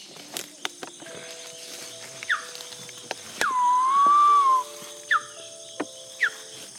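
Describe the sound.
A guide at Tiputini Biodiversity Station imitates a woolly monkey's call: a few short downward chirps and one long, wavering whistle-like call in the middle, over a steady buzz of insects and forest tones.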